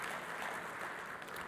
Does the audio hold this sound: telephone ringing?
no